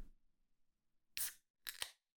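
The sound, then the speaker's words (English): A beer can is cracked open live on air before being poured into a glass, in two quick, bright bursts: a sharp metallic snap followed by a short fizzy hiss, after a faint low rumble with no talking. “I hope you can hear that crack so you know that I am in fact opening this live on air.”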